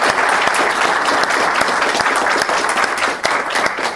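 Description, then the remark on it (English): A large live audience applauds steadily to honour supporters in the house, a dense wash of many hands clapping at once, loud, holding at full strength for the whole stretch without voices rising above it. “Everyone else, applaud these people. Applaud these heroes. Applaud.”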